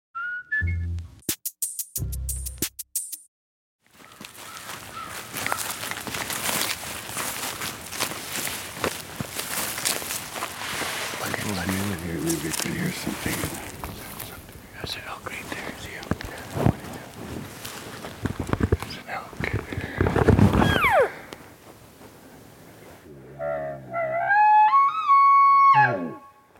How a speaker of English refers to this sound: That's an elk bugle. For those of you who don't regularly hunt elk, an elk bugle looks like a vacuum hose with a mouthpiece at one end. It's painted in green and yellow camo. The idea of a bugle is to imitate the call of an elk, also called a bugle,